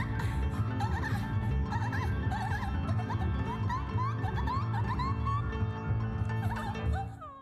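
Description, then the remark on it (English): High, wobbly squeaks like a guinea pig's squeals repeat over loud, dense music at the end of a song on an album, the wavering squeals continuing until the music cuts off at the end. “I had a guinea pig who made that noise.”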